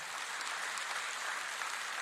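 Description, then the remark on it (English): A crowd claps for the Lord together in a steady, dense wash of applause that stays at an even volume throughout, with no voices rising above it. “Can we clap our hands for the Lord?”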